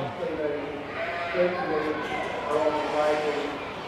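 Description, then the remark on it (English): Sheep and lambs bleat in an overlapping, near-continuous chorus, their wavering cries rising and falling over a steady background murmur; a ewe with her two plump lambs among them, including a ram lamb. “She is here with her two lambs, who are quite plump.”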